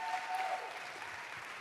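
An audience claps steadily, a dense, even wash of many hands applauding at a constant moderate volume for the whole stretch, with no talking over it.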